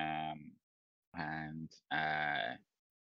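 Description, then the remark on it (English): A person imitates the bleat of a pet goat named Ramsey with three wavering, nasal cries separated by short pauses, loud, with no other talking. “You're holding your pet goat Ramsey in your arms.”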